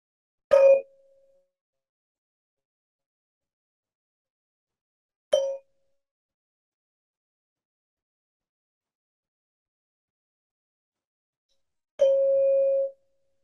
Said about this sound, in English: We'll start with listening to the sound of the bell. We'll use a little mindful listening there. So just staying with sound as long as we can as a pathway and entry to the present moment.